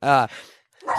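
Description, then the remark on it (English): A dog in a room gives a couple of short, sharp barks, about a second apart, loud, with a brief quiet pause between them. “Sorry, but I was saying it's weird that my dog is barking.”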